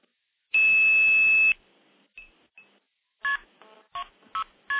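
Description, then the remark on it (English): A long, loud electronic tone gives way to a couple of faint blips, then a quick series of short multi-frequency telephone dialing beeps, clear, with no voices, as someone dials KP 2602 start on the terminating side to get a dial tone. “So I'm going to dial KP2602 start, and that'll give me a dial tone.”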